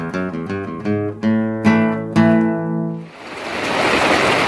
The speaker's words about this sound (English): Oh, the sound of rain.